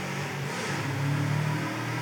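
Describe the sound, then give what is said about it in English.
A motorcycle engine in the neighborhood drones steadily, its pitch swelling briefly in a short rev before settling back, heard alone with no talking over a constant background hum. “Like a motorcycle sample”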